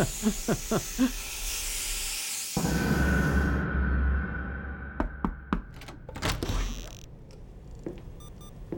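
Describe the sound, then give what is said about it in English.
A hot shower runs with a steady rushing hiss that surges louder after a couple of seconds, broken by a few sharp clicks and knocks, with no one talking. “Hot shower, here I come.”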